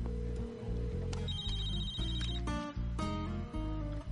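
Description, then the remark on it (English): A phone rings with a steady, electronic ringtone of layered tones that repeats in short bursts, fairly loud, with no voices over it. “Come on, pick up the phone.”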